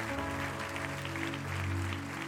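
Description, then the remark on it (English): An audience at a church service stands and claps together in a dense, steady wash of applause, held at an even level throughout, with sustained low musical tones humming underneath. “Clap your hands and rejoice, because the Lord is going to help us in this hour.”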